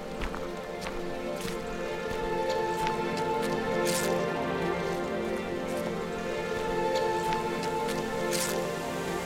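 A small waterfall in the garden valley at Bodnant trickles steadily under a low sun, a continuous watery wash flecked with brief splashes and drips, moderately loud and unbroken throughout, with no voices.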